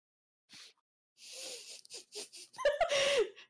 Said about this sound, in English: Yeah, I see. I coughed. My bad. I see that. I see the cough.